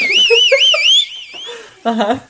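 A loud, shrill whistle warbles up and down in pitch for about a second and a half, with voices talking underneath it and a person speaking again shortly after.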